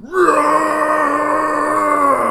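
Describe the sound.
A voice imitates a Wookiee roar: one long, sustained, growling howl that rises sharply at the start, then holds a steady, raspy pitch for about two seconds. It is loud and has no other sounds.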